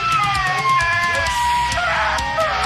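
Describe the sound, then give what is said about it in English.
A husky and a golden retriever that live together vocalize in long, drawn-out, wavering howls and yowls, loud and continuous throughout, with high whining tones sliding over rougher, lower barking grumbles. “This is a husky living with a golden retriever.”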